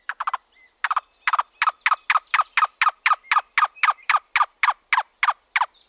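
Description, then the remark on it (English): A cuckoo, a slender brown and white bird with a long white-spotted tail, calls alone in a long series of hollow, clucking notes, about three per second after a quick stuttering start. It sounds steady, with no talking. “Cuckoos - Tent Caterpillar Birds”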